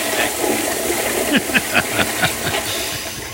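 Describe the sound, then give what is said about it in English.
A toilet flushes: a steady rush of water with a quick run of gurgling, bubbling pulses midway through, and no one talking. “Yeah, flush that witch.”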